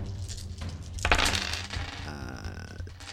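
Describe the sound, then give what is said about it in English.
Seven dice clatter and rattle across a hard surface in one quick burst, loudest at the start and settling within a second or so, with no talking; the dice are rolled for an attack in a game. “So, 7 dice. Let's go.”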